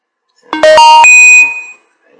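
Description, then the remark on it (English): A loud app notification chime: three or four quick bright tones stepping upward in pitch, the last note ringing out briefly before fading, with no voices over it. “So I got notifications left and right.”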